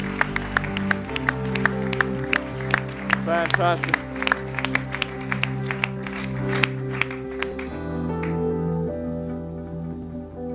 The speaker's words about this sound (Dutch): Why don't we give Jesus a hand? Laten we Jezus een applaus geven. Thank you, Lord.